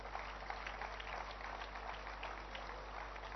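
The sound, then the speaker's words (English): A crowd claps their hands for the pastors from the Bread of Life Cathedral in steady, dense applause that holds at an even level for a few seconds, many overlapping claps blending into a continuous patter with no voices speaking. “The pastors from the Bread of Life Cathedral, clap your hands for them.”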